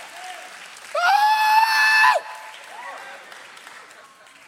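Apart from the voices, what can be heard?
audience clapping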